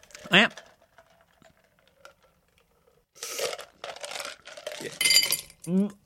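Ice cubes tumble and clink into a glass in a quick, loud flurry of bright rattling, with short vocal sounds at the start and the end.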